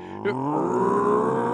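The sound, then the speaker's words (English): On a count of three, a group of people on a radio show imitate a dog barking together, letting out one loud, drawn-out, growly bark that holds steady and climbs slightly in pitch. “Let's bark together on the count of three.”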